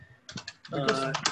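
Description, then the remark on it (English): A quick run of crisp computer keyboard taps, four or five close together, followed by a person talking while the keys fall quiet. The typing is fairly soft; someone is typing to pull up a list of English voice actors for Genshin Impact. “I'm actually typing this as I as we talk.”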